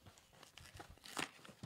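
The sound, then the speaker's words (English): Crinkly plastic cereal packaging rustles and tears open in a series of sharp, irregular crackles, building to a louder burst of crinkling partway through, with no voices. “I feel like an unboxing. All right, cereal.”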